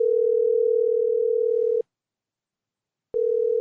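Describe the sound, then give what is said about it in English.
A steady telephone dial tone hums loudly for nearly two seconds while a call is being placed, cuts off into a short silence, then resumes abruptly with a click, clear with no voices. “Call my mom. Let's get her on the phone.”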